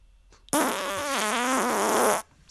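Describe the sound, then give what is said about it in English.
A single loud, drawn-out fart sound effect lasting under two seconds, high and buzzy with a wavering, sputtering pitch, starting abruptly and cutting off cleanly. “So if I click long, violent, high, it's not going to be another fart?”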